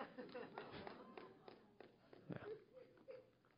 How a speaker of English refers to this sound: Yeah, thank you, whoever's applauding over there.